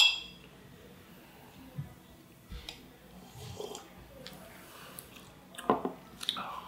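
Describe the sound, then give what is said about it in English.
A few soft mouth and sipping sounds as tequila is tasted, then a brief, light clink of glasses in a toast near the end. No one speaks. “But let's give it a taste. Cheers.”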